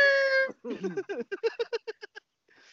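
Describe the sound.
A person imitates a cat, opening with a long, steady, tonal meow and then breaking into a quick string of about a dozen short, chattering meow-like yelps that fade toward the end.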